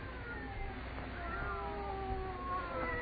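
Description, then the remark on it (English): Two cats meow in drawn-out, wavering, overlapping tones, rising and falling in long wails against a low background rumble, steady throughout, inside a quiet house in the story Little Old Lady. “listen to them. They're not ordinary cats. Listen to them.”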